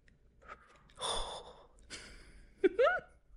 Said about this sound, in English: Nervous breathing. Nervous.